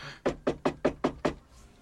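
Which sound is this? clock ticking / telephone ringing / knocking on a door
knocking on a door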